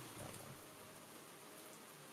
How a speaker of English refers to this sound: The rain is really loud.